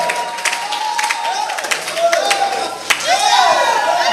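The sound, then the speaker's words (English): An audience in church claps for the Lord, the sharp claps blending into a lively, ongoing round of applause, while raised voices and cheers rise and swoop over the top. “Give the Lord a clap of free. Why can't you clap? Are we not in church?”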